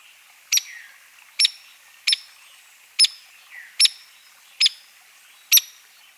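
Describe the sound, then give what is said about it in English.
A hairy woodpecker gives seven sharp, high pik calls, each a crisp single note spaced evenly about a beat apart, clear against a quiet background with no voices. “Harry Woodpecker.”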